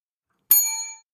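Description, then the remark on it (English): A single bright ding from a small bell, struck once and ringing out briefly before fading to silence, clear with no voices over it. “Oh, did you just ding?”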